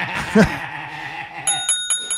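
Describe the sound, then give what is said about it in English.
A bright little bell, like a bicycle bell, rings four quick times in a row near the end, its metallic tone lingering between strikes after a brief murmur of voice and background noise. “He just ring a bell or something.”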